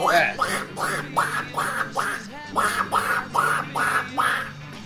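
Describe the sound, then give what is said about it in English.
A voice imitates Donald Duck, letting out about ten nasal, raspy quacks in a steady rapid rhythm, fairly loud, with no other talking. “Where most chicks, when you throat fuck them, you ask them to sing, they sound like Donald Duck.”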